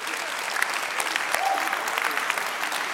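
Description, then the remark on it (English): An audience claps in a sustained round of applause for Jesus, dense and steady for the whole stretch with no pauses, a crackling wash of many hands at a fairly loud, even level. “And so if you believe that, will you give Jesus a round of applause today?”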